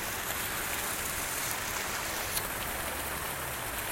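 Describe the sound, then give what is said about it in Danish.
A steady, dense wash of splashing water from large water jets pouring into a swimming pool, continuous with a bright hiss throughout and no voices. “Altså store dyser med vand.”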